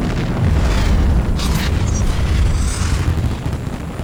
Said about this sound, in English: So the train explodes completely, sending shrapnel all over the place, causing a huge explosion of green fire that lights up into the sky.